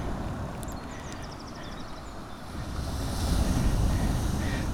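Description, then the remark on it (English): Wind gusts and waves wash onto Mouthmill Beach at high tide in a steady roar that swells louder toward the end, with a few faint high bird chirps early on and no talking. “I've reached the beach at Mouthmill Beach.”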